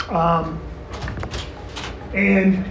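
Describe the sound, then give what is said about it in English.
A locked classroom door is tried: a few sharp rattles and clunks of a handle, between short stretches of a voice at the start and end. “Damn doors are locked.”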